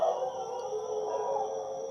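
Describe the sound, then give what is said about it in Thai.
A dog howls in one long, drawn-out note that holds a fairly steady pitch with slight wavering, moderately loud, with a faint high hiss in the background and no talking; a recording attached to a 2018 tweet. “แล้วเขาก็โค้ดทวีตของปี2018เขาก็มีแนบเสียงของหมาเห่ามาให้ฟังด้วย หมาหอน เออหมาหอนหมาหอน”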